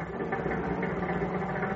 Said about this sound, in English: And a few minutes later, with lights out and engine idling, the chief's car rolls to a stop a short ways from the alley running behind the market.